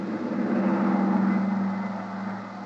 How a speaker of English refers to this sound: took over as pilot of the huge private two-engine plane that was waiting for us. Within a few minutes, we were airborne and on our way.